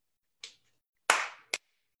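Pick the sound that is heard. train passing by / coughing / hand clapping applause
hand clapping applause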